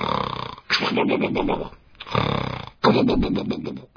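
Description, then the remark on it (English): A storyteller imitates the character Wind snoring: three long, rumbling, rasping breaths in steady succession, loud, with short gaps between them and no ordinary speech. “And she climbed onto that island and began searching around, and sure enough, there on the island she found Wind snoring away.”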